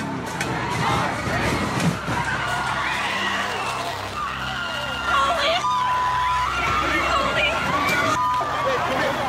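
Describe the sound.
A car drives into a crowd, with engine rumble and tire noise under a constant roar of shouting, screaming voices and chaotic babble throughout, a few sharp cries rising above the din.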